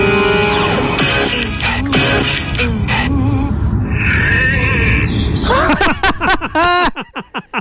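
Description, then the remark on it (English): An outside shed door creaks loudly in long, wavering squeals that rise and fall in pitch almost like a singing voice, then breaks into a run of short, choppy creaks. “So, this is a door, an outside door. It looks like a shed door, yeah?”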